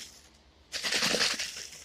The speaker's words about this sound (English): I want to get my water bottle real quick. It has ice in it. I literally just stuck distilled water into a Gatorade bottle and froze it.